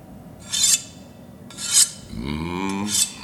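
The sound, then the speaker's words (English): A blade is sharpened in three harsh, hissing rasps spaced about a second apart, with a low rising metallic whine humming underneath between the last two strokes. “The sweet music of friction.”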